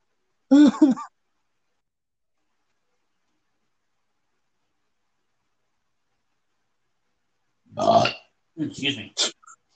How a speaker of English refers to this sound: Excuse me. You need to get a burp button.